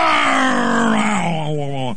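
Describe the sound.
A voice imitates a loud trombone blast, as of a trombone played on a front porch: one sustained, brassy, buzzing tone that slides slowly downward in pitch over about two seconds, staying strong throughout.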